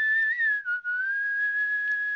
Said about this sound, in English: So I've got a penny whistle. I've got this fine lute whistle here. Yeah, I can play a tune here. I don't know if this is going to hurt people's ears.